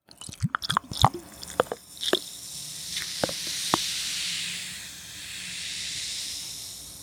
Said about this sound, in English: So invert the bottle, and then you can twist it open. Then we take our glass of ice with the fancy cube, and then we pour it.